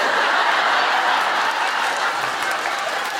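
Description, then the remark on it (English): An audience bursts into steady, dense applause at the mention of the place name Waterford, many hands clapping at once in a continuous wash of sound that holds level for a few seconds, with faint laughter mixed in. “Why is that getting a round of applause?”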